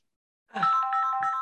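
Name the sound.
phone ringing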